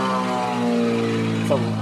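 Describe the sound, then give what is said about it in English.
A low-flying propeller plane drones loudly overhead, its deep, buzzing engine hum holding steady for the whole moment without fading. “Is that a low flying plane? Really low flying plane, and a giant truck just drove by at exactly the same moment.”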